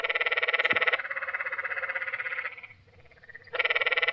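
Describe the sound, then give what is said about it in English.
Canyon tree frogs call at night in loud, rapid, buzzy bleating trills that overlap into a near-continuous chorus, briefly thinning out before a strong trill starts up again. “I love the sound of the canyon tree frogs at night and the drainages that sound like sheep.”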